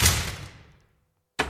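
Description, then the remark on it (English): A loud thud against a door rings out and slowly fades, then after a short silence a second sharp bang follows as the door is pushed open. No voices. “You don't have to knock to leave. There you go.”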